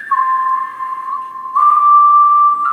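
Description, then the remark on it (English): Heavily auto-tuned whistling with unnaturally flat, held notes that snap abruptly from one pitch to the next, giving a choppy, robotic quality. It is fairly loud, with no talking. “So auto-tuned, heavily auto-tuned whistling.”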